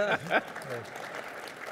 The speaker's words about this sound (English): Was there some applause for Daryl there? That's lovely.